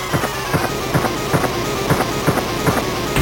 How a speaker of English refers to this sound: This is stupid. It sounds bad. Is he punching something? No, he's shooting. It's a bad... That's what I'm saying. It's a bad shotgun.